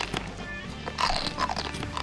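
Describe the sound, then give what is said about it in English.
A crisp bite into a crunchy chocolate wafer bar, followed by a run of brittle, irregular crunches as it's chewed, moderately loud with no talking. “I'm going to bite into mine now.”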